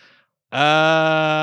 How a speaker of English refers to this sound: You're yawning at Aaron Rodgers? Yeah, he is a yawn.